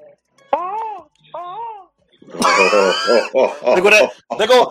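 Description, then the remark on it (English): A male caller on a phone line imitates a seagull and a crow mixed together: two wailing, gull-like cries, then a run of harsh, raspy crow-like caws in quick bursts, loud with a thin, phone-line quality. “They go that seagull and that crow mixed together on the phone.”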